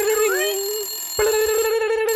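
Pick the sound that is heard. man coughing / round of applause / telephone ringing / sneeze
telephone ringing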